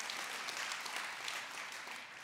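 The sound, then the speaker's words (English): A crowd bursts into steady applause for a spiritual tsunami coming to Jones County, a dense wash of many hands clapping at once, holding an even level throughout with no voices over it. “You can clap for that.”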